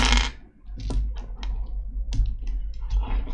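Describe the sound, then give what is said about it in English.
Irregular clicks and clatters of dice being scooped up and rolled across a hard surface for a 4-keep-4 dodge roll in a tabletop game, a burst at the start and scattered taps after, over a low steady hum. “I didn't have any of my dice out, so give me a sec.”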